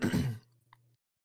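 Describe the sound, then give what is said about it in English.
A man clears his throat once, short and harsh, followed by a faint low hum and a tiny click before the sound fades out. “For those at home who hear … clear his throat, he does not have COVID.”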